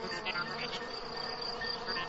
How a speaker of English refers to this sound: You can tell the temperature by how many times a cricket chirps in a minute.